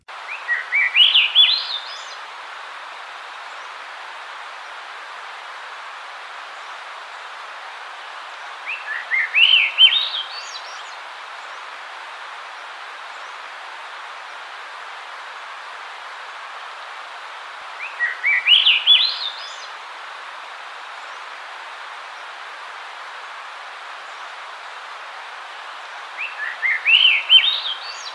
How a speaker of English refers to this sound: So that was a Swainson's thrush. Usually you'll start hearing them sing around the last of May.